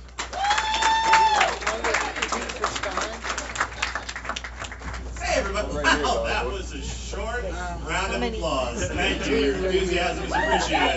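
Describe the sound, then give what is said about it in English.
An audience at a Wisecracks comedy show claps and cheers loudly for several seconds for the host, a dense burst of applause that fades as a man starts talking over the last scattered claps. “Hey, my round of applause.”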